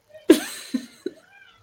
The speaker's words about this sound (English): There's a cat. There's a cat.